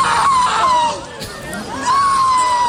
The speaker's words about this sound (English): Listen to this man scream.